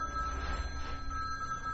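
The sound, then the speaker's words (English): A mobile phone rings with a steady, fairly high electronic tone held throughout, sitting faintly over a low background rumble with no one speaking. “I didn't know I had a phone with me.”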